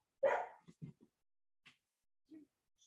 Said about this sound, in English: Can you hear this dog? I can. Hey, Tyrion.